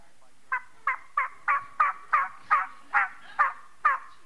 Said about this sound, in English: A female will respond back. If she's roosting off a little way, she'll respond back by doing hen yelps, which sound like...